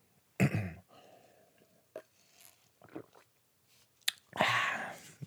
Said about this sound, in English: Just having a sip of my coffee there. It's good coffee. It's a store bought home cold brew brand. I love cold brew coffee. And you mix it with a little bit of cream.